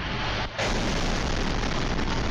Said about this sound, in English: Explosions across the country are forcing infants and their mothers into makeshift bomb shelters and hospitals.